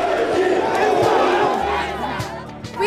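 A large protest crowd pours onto the street shouting "Resign" together, a dense, continuous roar of many voices with rising chant-like surges and scattered louder cries, steady and loud throughout.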